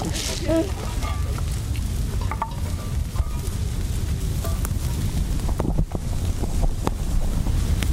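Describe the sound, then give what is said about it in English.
Fire crackles and hisses steadily through dry leaves, with scattered sharp pops over a constant roar, while gusts of wind buffet the microphone throughout. “When the fire takes off, spreading through the dry leaves, I feel this pit in my stomach.”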